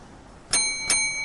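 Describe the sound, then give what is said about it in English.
A bell rings twice in quick succession, each bright strike leaving a clear metallic tone that keeps ringing out, with no talking. “you can ring the bell. After like a minute after you ring that bell, you finally hear some like scampering from like, it's coming from the kitchen.”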